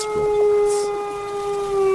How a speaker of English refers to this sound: The baying of the wolves sounded nearer and nearer, as if though they were closing round us from every side. We kept on ascending, always ascending, the howling of the wolves.